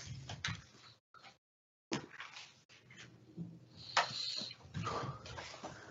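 A guitar gets bumped and nearly knocked over: a series of hollow thuds and clattering knocks, with a brief ringing resonance and shuffling handling noise between them.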